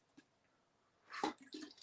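sipping lemon water

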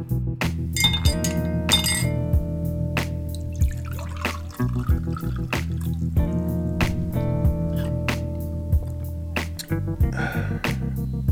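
glasses clinking

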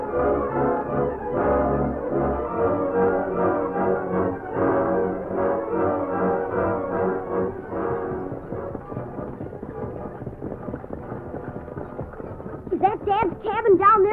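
horse hooves galloping

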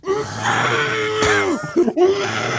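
person screaming

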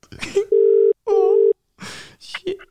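phone call ringing tone

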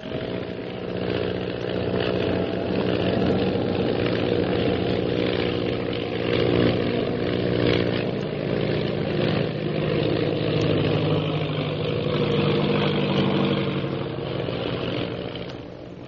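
propeller airplane engine

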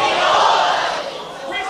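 audience shouting

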